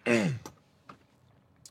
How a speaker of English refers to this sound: And then I'm just going to take a little sip of coffee because something in my... I have a little bit of a cough here.